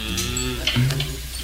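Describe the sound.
A man imitates a cow with a low, drawn-out moo that swells briefly in the middle. It is fairly loud, with no other talking.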